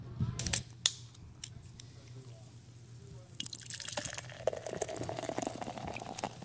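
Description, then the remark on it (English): Beer pours into a glass at Club 22: a few sharp clicks and taps, then a steady gush of liquid with fizzing and a rising pitch as the glass fills, over a low background hum. “I think it's time for you to pour us a beer.”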